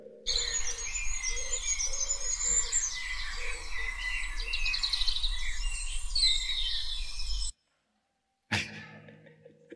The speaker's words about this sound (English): I'm gonna play an audio clip. This is the Dawn Chorus in lockdown. So this is gonna be Birdsong.